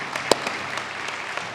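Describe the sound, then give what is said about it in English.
An audience applauding Nathan after his message, a dense, steady wash of many hands clapping at once, with one sharper, louder clap standing out near the start. No one speaks over it. “And as you are, give Nathan another big round of applause.”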